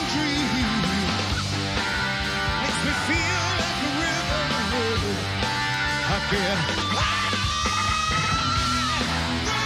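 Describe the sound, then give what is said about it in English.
Loud, dense rock music plays at a live concert in a large venue, with a singer's raw scream, and a squealing guitar pinch harmonic rises alongside it, holding a sustained high note toward the end. “Like, matched his scream with the little pinch harmonic.”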